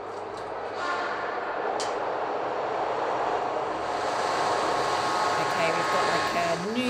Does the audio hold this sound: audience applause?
no